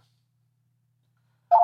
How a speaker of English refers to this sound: Is that your phone? Yes, my phone. I'm turning that off.